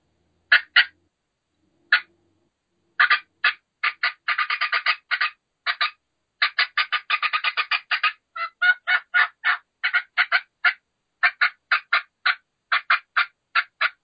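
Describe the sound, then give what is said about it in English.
A hen turkey call gives fast cutting and yelping: sharp, rapid clucks in irregular bursts and quick runs, some densely packed, loud and clear against silence for about fourteen seconds. “Then at that point, I'm just going to give a lot of fast cutting and yelping, and we'll give a little longer sequence like so.”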